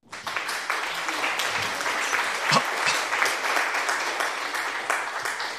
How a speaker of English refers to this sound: As soon as you open your mouth, applause comes out. It's crazy.